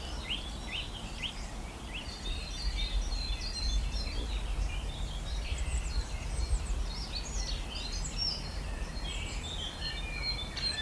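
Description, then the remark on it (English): A nuthatch just overhead calls repeatedly and taps on a nut amid a busy outdoor chorus of other birds, short bright notes scattered throughout, with a steady low rumble of wind underneath and no talking. “It's a nuthatch. Just above me, hatching a nut. Right here. Tap, tap, tap.”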